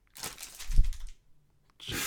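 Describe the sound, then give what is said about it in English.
Paper is thrown and crumpled by an assistant: it crinkles and rustles loudly for about a second, with a dull thump in the middle, then falls silent before another short burst of crumpling starts up. No voices. “Sorry, that was my assistant throwing some paper.”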